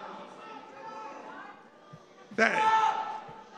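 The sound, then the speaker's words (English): A crowd at a political gathering murmurs in the background, then abruptly erupts into loud, sustained booing, catcalling and shouting aimed at a speaker that lasts about a second before fading back to a low rumble. “They're booing him like crazy.”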